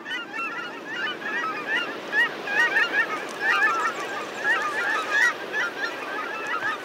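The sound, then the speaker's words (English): A large flock of migrating waterfowl calls continuously along a North American flyway, dozens of overlapping goose-like honks and yelps forming a dense, steady chorus, with no voices. “In spring and fall, you'll see what look like huge rivers of ducks, seabirds, shorebirds, raptors, and songbirds.”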